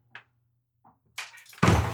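A couple of soft thunks are followed by a rattling burst and then a loud, full slam of a door, with no voices.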